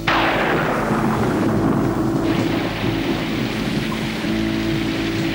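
Heavy rain pours down steadily and loudly while low thunder rumbles underneath, a dense continuous wash of storm noise with no voices.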